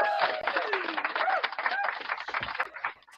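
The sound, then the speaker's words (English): A steady burst of applause with scattered whoops and whistles riding over the clapping, holding loud for about three seconds before tapering off at the end; a round of applause for the film The Devil's Rejects. “How about another round of applause for Devil's Rejects real quick?”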